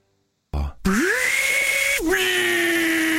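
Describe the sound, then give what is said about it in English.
An 18-volt Ryobi cordless drill driver whirs up after a short rattling burst, holding a steady, loud motor whine that briefly dips and surges back for about three seconds. “18-volt drill driver.”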